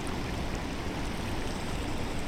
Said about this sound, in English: The height of the falls is a full 57 meters taller than Niagara Falls, and its sheer magnitude dominates the view. As the water tips over the edge of the cliffside, it rushes down so powerfully that the water looks like a wall of white.